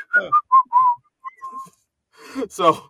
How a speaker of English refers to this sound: I'm going to casually whistle now.